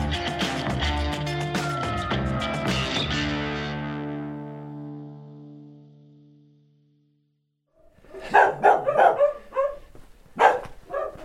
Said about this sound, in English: There goes the silence, hey? I think I've triggered every dog in the village that's left. I'm here in Jardo, a little Portuguese village next to the Coa River, 5 miles from the border of Spain.